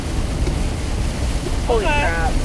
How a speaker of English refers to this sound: You guys are going to have to talk louder. It is very rainy and it's loud.